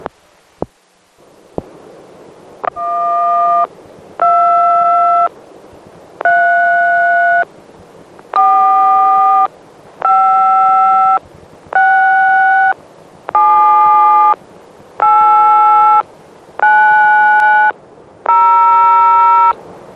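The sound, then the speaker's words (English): A steady sequence of about ten electronic telephone signaling tones, put on at the end of a tape recording, each a short harmonic beep roughly a second long with brief gaps, loud against a faint hum, no voices. “I'll put the tones on and put it in a package and mail it to you right away.”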